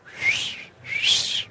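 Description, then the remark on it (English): Someone whistles two breathy, rising bird-call phrases in quick succession, a person imitating a parrot. The whistle is airy, with a brief dip between the calls and no talking. “Cue the bird. Ooh, cue the parrot.”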